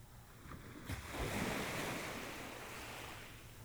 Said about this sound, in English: Close your eyes. Listen to the sound of the ocean.